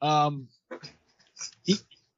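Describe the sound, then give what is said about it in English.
A person does a short, drawn-out dog-like "baroo" howl with their voice, followed by some quieter breathy vocal sounds and a brief burst of voice. “Yeah, B-A-R-O-O, like, you know, like the noise, like a kind of thing. Yeah. Oh, dogs are so stupid.”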